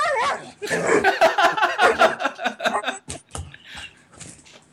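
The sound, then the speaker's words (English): A dog having a freak-out barks, yips and whimpers in a frantic, rapid string of high-pitched cries, tapering into softer whines, with faint human voices or laughter mixed in. “Oh, my dog just had such a freak out.”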